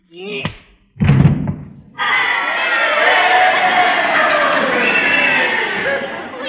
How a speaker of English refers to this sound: This is the way the crowd wanted it to end. You heard them cheering, didn't you?